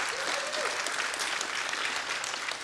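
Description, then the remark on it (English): A church audience bursts into sustained hand clapping for their pastor, a dense, steady wash of applause from many people, with no voices standing out. “And if you need counseling in your life, yeah, give him a great big hand clap.”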